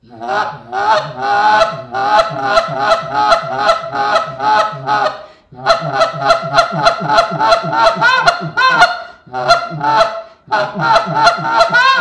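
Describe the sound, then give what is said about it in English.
A goose call blown as a call on the water, in fast, rhythmic runs of nasal honks and clucks, loud and steady, broken by two brief pauses into three bursts, with no talking. “That's a great little call on the water right there.”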